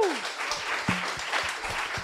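A steady round of applause from a crowd, many hands clapping in a dense, continuous patter at an even loudness, with faint voices mixed underneath.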